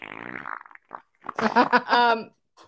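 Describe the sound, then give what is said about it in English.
A loud, buzzing fart noise from a man who has just said he is farting, apparently made by a voice imitating it, comes in a couple of bursts with brief gaps, fairly forceful, then trails off. “announced, "I'm farting," followed by a loud noise that suggests he wasn't lying.”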